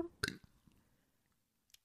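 human body sound, burp

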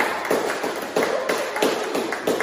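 crowd, clapping

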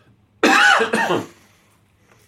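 human body sound, cough

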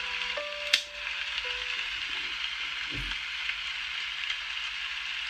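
nature, heavy rain falling

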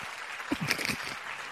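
crowd, applause

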